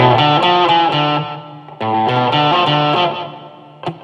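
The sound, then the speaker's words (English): An electric guitar plays a short run of picked notes with a slow delay, each phrase trailing off in faint echoes before the next begins. Loud, with no talking. “Now, me personally speaking, I don't use any delay that is any more than one repeat, and I generally don't go any I don't go any more of a slower delay than this.”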